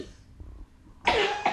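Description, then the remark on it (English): A dog named Piper gives a sharp, raspy cough followed by a second quick hack, fairly loud after a quiet moment with no talking. “You got a little cough?”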